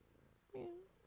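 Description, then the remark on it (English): A cat lets out a short, rising purring trill that lasts under half a second, standing out clearly over faint background noise. “Check, check on the gonorrhea and the cat purr.”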